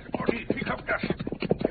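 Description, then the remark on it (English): Rapid hoofbeats of galloping horses, Diablo and Horty, as their riders chase after outlaws, drum in a steady, driving rhythm, moderately loud, with a muffled, band-limited quality. “The sheriff and I will try to catch those coyotes. Up, Diablo, up, Diablo! Get up, Horty, get up, get up!”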